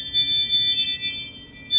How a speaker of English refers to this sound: Did you hear that? Yeah. Sorry, I just got the Ring doorbell.